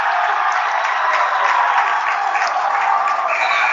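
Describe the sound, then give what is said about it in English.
A basketball crowd at the Boltman Center cheers in a loud, steady roar mixed with applause, three minutes into a game with Northwestern leading Hastings 14-6, holding at a constant level for a few seconds with no single voice standing out. “Northwestern has got a 14-6 lead over Hastings, and the place is going berserk already. Good crowd on hand here at the Boltman Center.”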